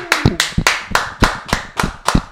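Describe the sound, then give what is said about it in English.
A quick, steady run of hand claps, about eight sharp, loud smacks at an even rhythm, with no voices over them, welcoming two NBA 2K League commentators as guests on a four-person stream. “Clap it up.”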